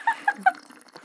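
Water sloshing inside a water bottle, heard as three quick, bubbly gurgles in an even rhythm, then a faint trailing slosh into near-quiet.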